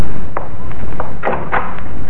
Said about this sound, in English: Oh, who's there? Open the door.